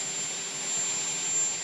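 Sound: loud helicopter flying overhead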